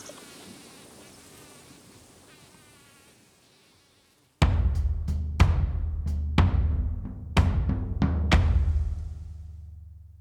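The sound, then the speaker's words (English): A dense swarm of bees buzzes steadily for about four seconds and fades, then a series of loud, sharp thuds strikes irregularly over a low booming rumble. “Watch out, it's sea bees!”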